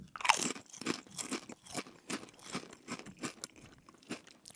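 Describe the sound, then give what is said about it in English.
Someone chews a ketchup potato chip, producing a steady series of crisp, crackly crunches, around ten bites in rhythmic succession, fairly loud with no talking. “It's ketchup on it, baked into a potato chip.”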